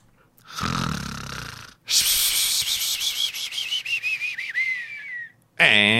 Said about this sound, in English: I only got in one snore there. That was an elongated snore.